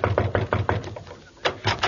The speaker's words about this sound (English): All right, there's a dressing room over there. I'll knock on the door.